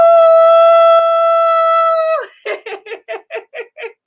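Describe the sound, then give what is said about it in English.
A human voice imitates a wolf howling at the moon as part of a ritual, holding one long, steady howl for about two seconds, then breaking into a quick run of seven short, rhythmic yips, loud. “We're going to howl at the moon.”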